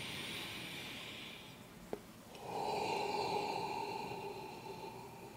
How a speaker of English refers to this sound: The breathing method we're going to include with the Da Lur is going to be the nose-mouth breathing, the standard kind of Eastern meditation breathing. So you're going to breathe into the nose.